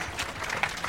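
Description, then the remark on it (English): A brief patter of scattered clapping from about a third of an audience seated together, light and uneven, with a few sharper claps standing out from a thin, hissy wash of hands. “They're all sitting next to each other, too, so I think some people are just clapping because they didn't want to be left out.”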